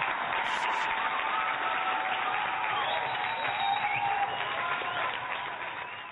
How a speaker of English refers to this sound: Round of applause for Rochelle here.